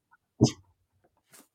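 A single short, sharp bark from a male dog guarding the home against mail carriers rings out loud, followed by near silence and a faint breathy rustle at the end; nobody speaks.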